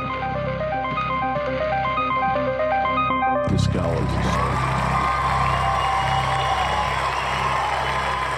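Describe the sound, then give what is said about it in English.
A short, bright musical jingle plays, then a loud crowd breaks into steady cheering and applause that carries through to the end. “Okay, that's our crowd.”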